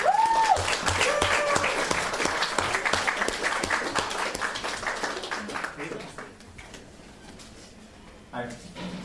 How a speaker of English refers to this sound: He, him. Do we love him? Yes! Good. Everybody clap!